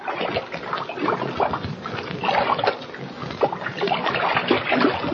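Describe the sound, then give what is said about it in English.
Water sloshes and splashes steadily for several seconds in the cold water at the bottom of an old abandoned deep well, about 40 feet down, a busy, churning wash of liquid movement, with no voices. “The cold water at the bottom of the deep well has revived them.”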